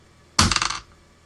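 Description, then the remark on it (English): A short, bright clatter of dice tumbling across a hard table, a quick burst of several rapid rattling clicks lasting under half a second, fairly loud, then quiet. “I'm going to have to ask someone else to make it for me, because someone found my dice.”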